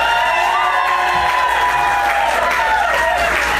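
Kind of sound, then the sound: crowd, audience applause and cheering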